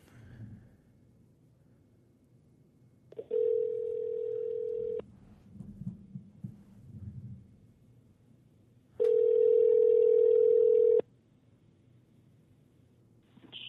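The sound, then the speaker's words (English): Two long, steady ringback tones sound on an outgoing phone call to someone in Arizona, each lasting about two seconds with a pause between, fairly loud and clear over faint background murmur. “I'm about to give him a call, so he's going to be calling in.”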